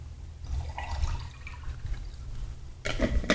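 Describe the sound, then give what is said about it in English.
Water is poured in a steady, splashy stream over a low rumble, swelling louder and fuller near the end. No one speaks. “I need more water, boy.”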